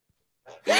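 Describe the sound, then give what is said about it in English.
A single sneeze, with a short sharp intake of breath followed by a loud, explosive burst of air, with no talking. “Bless you.”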